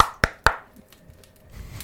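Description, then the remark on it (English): Three quick, sharp knocks in an even rhythm, imitating knocking on a door during a game, followed by a stretch of faint rustling and low noise. “You have to roll for knocking on a door in this game?”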